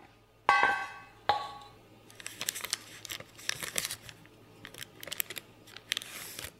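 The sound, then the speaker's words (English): Two sharp knocks ring out, then baking paper is slowly and gently peeled off a chocolate mousse block flipped out onto a board, in a run of crinkly, rustling bursts, with no talking. “So you're going to flip it out and gently remove the baking paper that is stuck to it.”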